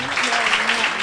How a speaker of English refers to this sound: Okay, clap for this. You guys are a great crowd.